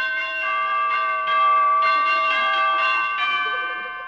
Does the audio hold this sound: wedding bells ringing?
yes